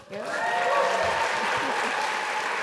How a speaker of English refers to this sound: Clap for him, just because he's not from this state. You can clap for him.